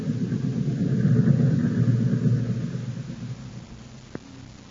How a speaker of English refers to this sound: Hey, here comes the train.